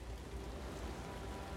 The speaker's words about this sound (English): A light drizzle of rain mixes with the sea mist that cloaks the creeks and inlets of the rocky West Highlands coastline.